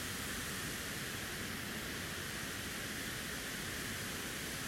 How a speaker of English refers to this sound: And other than the water, there's silence.